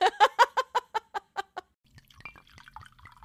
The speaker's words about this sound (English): Ooh, it's quite a pour. All right, well, Kansas wine.